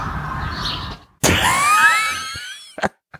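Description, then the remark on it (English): Shrill, high chirping tones, several overlapping and sliding downward, burst in after a second of low noise, then fade out, with a couple of short sharp clicks at the end. “I like birds still peacefully chirping in the back.”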